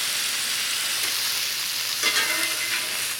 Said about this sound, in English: So I can throw the veggies in here and get them going. Add red and green bell peppers. We want the sizzle. The sizzle is good. And purple onions.